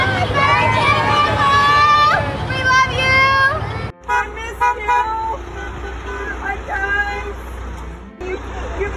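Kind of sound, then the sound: vehicle, car horns honking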